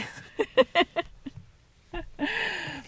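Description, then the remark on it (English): A breathy yawn: a few short voiced catches, a brief pause, then a long drawn-out airy exhale with a soft groaning tone that trails off. “And as I did that more and more, excuse me, I am yawning again.”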